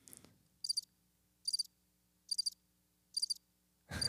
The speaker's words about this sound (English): Crickets.